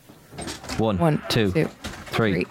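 An automatic door opens in halting stop-start bursts, each movement giving a drawn-out, pitched creak or squeak, with three distinct surges separated by short pauses, moderately loud.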